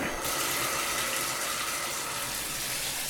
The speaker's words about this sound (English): Okay, that's beginning to fill up. Kind of what you expect from a bathtub. Yeah, it's filling up pretty nicely.